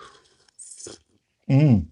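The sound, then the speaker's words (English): A brief, airy slurp of someone sipping hot tea, followed after a pause by a loud, satisfied vocal 'ahh'. “I'm going to sip my tea.”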